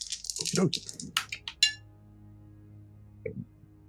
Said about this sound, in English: So 3 dice. I don't think you're using any of your telepathy, so go ahead and roll those 3 dice there.